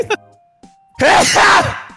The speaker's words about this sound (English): You know what's weird? I always sneeze in twos.